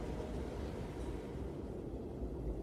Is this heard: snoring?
no